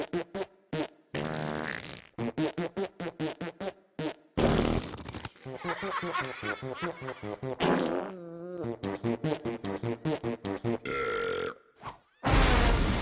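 A rapid string of loud, pitched fart noises played in a musical pattern, from the fart symphony scene in the movie Captain Underpants: The First Epic Movie, mixing short blasts with longer buzzy, wavering ones, separated by brief silent gaps. No one speaks.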